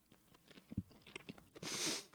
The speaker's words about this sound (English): Oh God, the ASMR of me chewing.